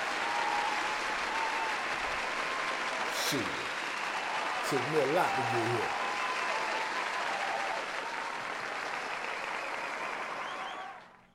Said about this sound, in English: I'm gonna take my applause. If I don't do nothing else, I'm gonna take my applause.